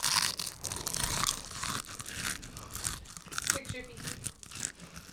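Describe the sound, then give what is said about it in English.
Crisp crunching of a flavored potato chip, a run of brittle cracks and crinkles lasting several seconds, fairly loud, with a faint voice briefly underneath. “Well, real Final Crunch.”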